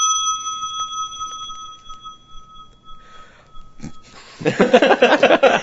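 A single bright bell sound effect rings out and sustains for several seconds, fading slowly, before a burst of loud, busy voices or noise takes over at the end.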